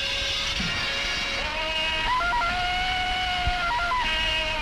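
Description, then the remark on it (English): A classic Tarzan jungle man yell resembling the Johnny Weissmuller yell: one long, loud, sustained wordless cry that leaps back and forth between pitches in a yodeling pattern, with no other sounds. “That sounds like the Weissmuller yell.”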